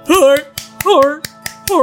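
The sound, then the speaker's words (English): Around eight sharp, crisp claps in a quick, steady rhythm as a story character claps his noodles in joy, mixed with bright, wordless vocal squeals that rise and fall in pitch between the beats. “He clapped his noodles in joy.”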